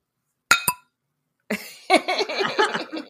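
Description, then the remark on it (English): Two quick, bright glass clinks ring out as a glass is bumped against a microphone in a toast, one right after the other, followed after a pause by a longer stretch of busy, jumbled noise. “I'm just gonna bump my glass up against my microphone. I'm gonna make the sound.”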